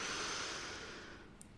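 A long, deep inhale through the nose, a soft airy hiss that holds steady and then gradually fades, with no talking over it.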